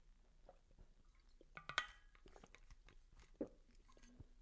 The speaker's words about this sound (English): Actually, let me just take a sip of water real quick, if you don't mind. Excuse me.